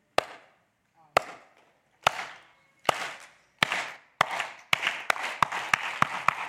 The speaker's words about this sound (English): Isn't a slow clap just really fun? It just wakes me up.